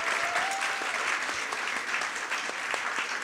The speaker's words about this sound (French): On l'applaudit très fort, je ne sais pas s'il nous entendra.